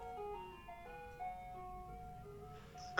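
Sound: ice cream truck jingle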